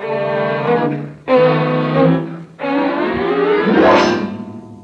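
A car engine drives hard, climbing in pitch through three surges with brief dips between them like gear changes, ending in a rising rev. No one speaks.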